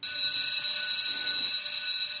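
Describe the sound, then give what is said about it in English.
A loud school bell rings continuously for the whole stretch, a steady, bright metallic clang holding at constant level without pause. “Boy, that's a long bell.”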